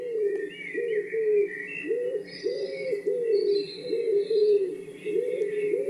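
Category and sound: bird, wood pigeon cooing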